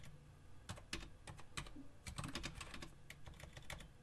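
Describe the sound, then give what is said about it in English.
Rapid, irregular clicking of keys being typed on a new computer keyboard, fairly clear, with short bursts of keystrokes and brief pauses over a low background hum. “Just getting used to a new keyboard”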